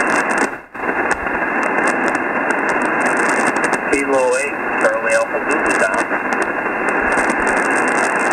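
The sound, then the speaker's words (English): Steady, dense amateur radio static hisses throughout, with a faint, band-limited voice coming through the noise partway in as someone transmits over the air. “We got static down here, too.”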